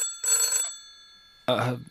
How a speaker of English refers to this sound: Hold on. I have to get the phone.